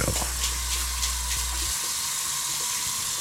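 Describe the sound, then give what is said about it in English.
Warm water runs steadily from a tap into a tank being filled, a continuous hissing rush throughout, with a man's brief remark at the start and a low hum fading out midway. “Okay, now I'm gonna fill the Dvaj tank up with warm water.”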